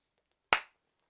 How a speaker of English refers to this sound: Got to get that clap sync in there.